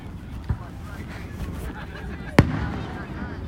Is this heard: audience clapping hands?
no